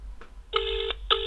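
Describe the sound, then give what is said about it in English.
A phone line ringing back in the earpiece on an outgoing call: one steady electronic ring tone lasting under half a second, a brief pause, then the next ring beginning, heard alone over a faint low hum. “There we go. Just ringing there.”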